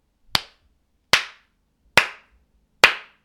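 Four sharp hand claps, slow and evenly spaced about a second apart, each a crisp smack with a short decay and silence between.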